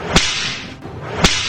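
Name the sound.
whip crack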